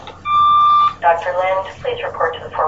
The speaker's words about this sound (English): How'd that deaf girl hear that alarm bell?